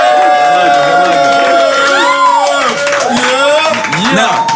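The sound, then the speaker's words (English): The Drink Champs studio audience cheers loudly and steadily for Nick Cannon, with overlapping shouts and whoops rising and falling over a dense wash of crowd noise and some clapping, sustained for several seconds. “Make some noise!”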